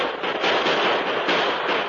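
gunfire sound effect

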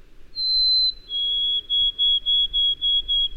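white-throated sparrow song

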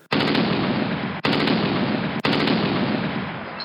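gunfire shooting

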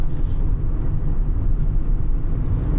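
inside a moving car

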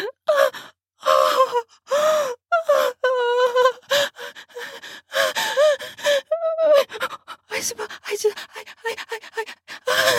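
gasping

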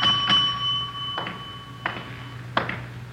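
hotel desk bell ringing

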